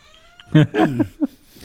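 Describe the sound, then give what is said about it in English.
A cat meows, a drawn-out wavering meow followed by a brief chirp-like call, with no one talking. “Cat agrees. Yes, vocally.”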